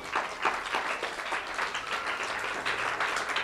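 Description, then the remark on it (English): An audience claps to God in worship, a dense, steady burst of applause with many hands overlapping into a continuous crackle that holds at a fairly even loudness throughout. “Can we give a clap to God?”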